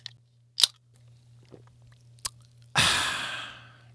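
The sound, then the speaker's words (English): A few sharp clicks of handling a drink, then a loud fizzing rush that slowly fades, as someone sips a Mountain Dew, with no one talking. “Excuse me for a moment while I take a sip of this fine Mountain Dew.”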